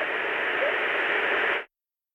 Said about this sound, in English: And part of that frequency range of the white noise is going to be covering that up. And so this is known as masking, where one sound, if it's in a similar frequency range to another sound, it will cover that sound up.